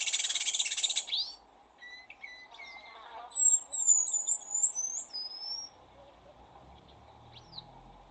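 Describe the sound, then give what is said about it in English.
A long-tailed paradise whydah's call: a high, thin whistle, drawn out over about two seconds with sliding, wavering pitch, follows a brief buzzy insect-like hiss at the start, over a faint low background rumble. “You'll see, as I said before, it's got a very long, drawn-out sort of whistling sound, like this. Hear that?”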